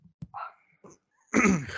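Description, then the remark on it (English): A dog makes a few short whiny yips, followed by a louder, rougher burst of noise, with brief pauses between the sounds and no one talking. “what I say about that dog? Yo, I'm about to fucking strangle him.”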